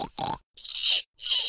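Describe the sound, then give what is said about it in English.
A pet pig named Jiggy grunts twice in quick succession, then lets out two longer, harsh snorting bursts with a short pause between them, fairly loud with no talking. “this is my pet pig, Jiggy.”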